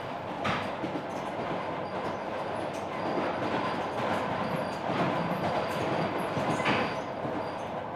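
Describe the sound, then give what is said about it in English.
A train rumbles steadily along the tracks, its cars rattling and clacking with a dense, continuous roar, heard from on board an open cattle car, with occasional sharper metallic clanks. “Hello there, mighty odd place to climb on a train.”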